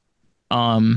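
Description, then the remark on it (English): The cat Twix gives one loud, drawn-out meow with a steady, tonal pitch, cutting in abruptly halfway through after near silence and holding to the end. “it's meowing in the background”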